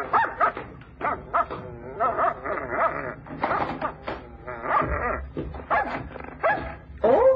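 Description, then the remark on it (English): A dog named Tootsie barks and yips in quick, irregular bursts, fairly loud, with whining, excited sounds between the barks throughout. “Are you sure the dog don't bite?”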